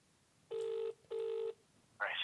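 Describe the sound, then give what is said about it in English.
A phone line's ringing tone, on a call to someone standing at the Zoom gallery by Warrior Square station, sounds one double ring: two short, steady electronic buzzes with a brief gap between them, heard clearly over a quiet line before a voice cuts in at the end. “And I'm going to see if I can have a quick chat with him on the phone now whilst he's at Zoom.”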